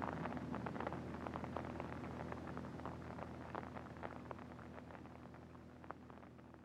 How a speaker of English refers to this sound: And the rain's just on time. Now it'll rain the rest of the night.